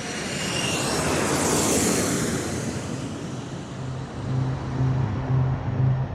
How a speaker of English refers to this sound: And those remotely piloted vehicles, those drones flying high above the thick rainforest canopies of Vietnam, became known as... the Lightning Bug. The Ryan Firebee drone. Otherwise known as the Lightning Bug.